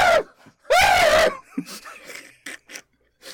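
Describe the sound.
A person imitates the shriek of an enraged mandrill: a short yelp, then a loud, strained, wavering screech lasting about half a second, followed by faint breathy grunts and clicks.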